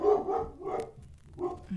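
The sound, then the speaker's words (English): A dog barks, three or four short, sharp barks in quick succession, fairly loud with no talking. “There's my sweet baby. My dogs, they're a priority in my life.”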